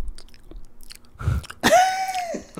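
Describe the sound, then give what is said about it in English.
A person imitates a man's dry-mouth smacking noise made while sleeping: a brief wet smack and click, then a drawn-out, squeaky voiced tone lasting nearly a second before it cuts off. “It, like, literally, like, summons me from my sleep because it's just, like, the weirdest noise.”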